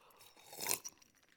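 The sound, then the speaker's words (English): A single loud, bright crunch of ice being bitten in the mouth by a speaker addressing a crowd, peaking briefly with a smaller crackle right after, over a low steady background hiss. “First lesson on public speaking, never suck on ice when you're talking to a crowd, right?”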